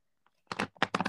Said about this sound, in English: Oh, this deck does not shuffle very well. Well, I can't shuffle my deck, so.